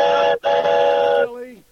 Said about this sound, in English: And this is a train whistle.